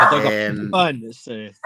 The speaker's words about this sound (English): Sorry, my dogs just went to join in.